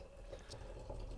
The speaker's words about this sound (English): Let's pour up my seltzy. Is there wine in there? Yeah, a little bit. Just made a wine seltzy. I made a sangria. I don't know what sangria is actually, but yes, it's a little bit of wine and some seltzer.